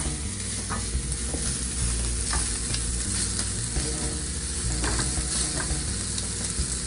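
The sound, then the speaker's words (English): Food, browning quickly, fries in a skillet with a steady, dense hiss of sizzling and frequent small crackles and pops, plus occasional scraping from stirring. No one speaks. “So you can see that's browning really quick.”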